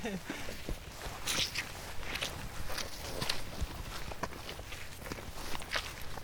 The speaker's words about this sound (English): So we can start to hear the noise of the river, the sound of the river rippling away down in the bottom of the dell there. So the river's fast flowing here and going through a lot of rocks, so you can sort of see the rapids